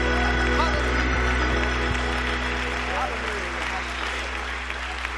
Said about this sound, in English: Somebody clap your hands unto the Lord before you're seated. And lift up a joyful noise before the Lord.